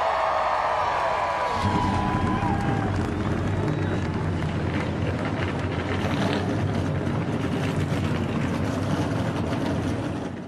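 At the start of the Toyota Grand Prix of Long Beach, Southern California, a pack of race car engines bursts to life after a brief higher whine, then holds a loud, dense, rumbling roar with revving surges that continues steadily to the end.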